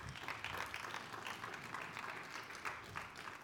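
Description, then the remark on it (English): An audience in church pews applauds, many hands clapping in a dense, steady wash of sharp claps that holds an even loudness throughout, with no voices standing out. “So just give yourselves a hand clap for that.”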